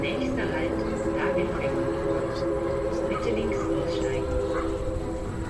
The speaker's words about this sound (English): What's that sound? It's like music. Is it piano? No, sorry, not the piano. There's like another weird sound. It's like a German train station. Like a crowded German train station.